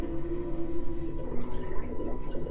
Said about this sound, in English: Yeah, I love the bubbling Pepto-Bismol.